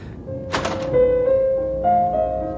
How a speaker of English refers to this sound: It's in here. Okay. Open the door.